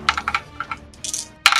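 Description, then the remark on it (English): Several dice are rolled for damage in a tabletop role-playing game, clattering across a hard tabletop in a quick run of sharp clicks and rattles, ending with a louder burst of tumbling. No one speaks. “Many dice.”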